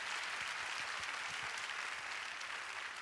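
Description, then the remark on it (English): An audience claps their hands in a steady, dense wash of applause, many overlapping claps forming a continuous bright patter that holds at an even level throughout. “Come on, give glory to God. Clap your hands.”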